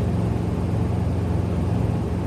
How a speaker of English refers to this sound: So you're in a helicopter above the house now? Correct.